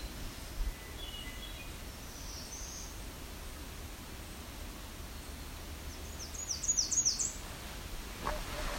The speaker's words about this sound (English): And that's the myrtle warbler.